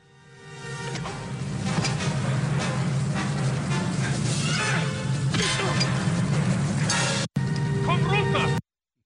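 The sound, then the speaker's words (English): Dense, loud orchestral film score from the fistfight scene in Raiders of the Lost Ark (Indiana Jones), its sharp accents landing on thuds and smacks of the fight and emphasizing the swings of a wrench and the punches; a brief gap near the end, then a final burst. “So you can hear that the music emphasizes the swings of the wrench and the punches.”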